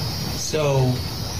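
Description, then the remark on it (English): A drone buzzes over a steady background hiss in a played video, its droning whine swelling briefly in the middle of the short clip before fading back into the noise; the drone is not yet visible. “You can't even see the penis drone yet. You can hear the buzzing.”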